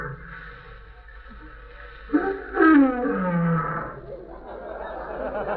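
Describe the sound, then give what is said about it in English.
A Pekingese dog at a trading post growls in a single loud, snarling burst that swells with a wavering roar, then sinks to a low rumble and fades. A steady low hum persists underneath. “Why, yes, I've got a nice friendly dog right here.”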